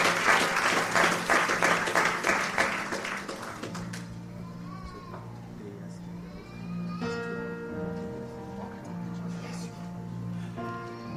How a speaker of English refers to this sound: Just a round of applause for this man of God.